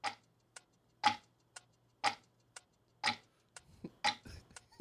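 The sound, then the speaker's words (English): A clock ticks steadily, alternating a louder tick with a softer tock about twice a second, crisp and clear against near silence. “I just wanted to play the clocks.”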